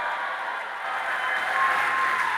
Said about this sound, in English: You're clapping and shaking the house now. Come on, scream and give God a praise.